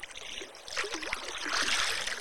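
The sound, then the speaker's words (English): Muffled, continuous watery wash with bubbling and gurgling swells, steady, recorded underwater beneath moving water. No voices. “this one's underwater. This is underwater.”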